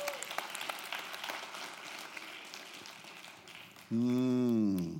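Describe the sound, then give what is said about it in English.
A church audience applauds at the close of a prayer with a dense, steady patter of many hands clapping for about four seconds, then one loud voice cuts in over the fading claps. “One more hand clap for everyone.”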